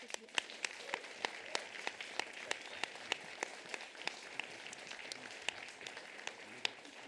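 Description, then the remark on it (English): An audience at a post-show at the Traverse Theatre applauds steadily for several seconds for the cast and playwright of Grain in the Blood, a dense patter of many hands with a few sharper individual claps standing out at a quick, regular beat. No one speaks over it. “And I'd like to give them a big round of applause.”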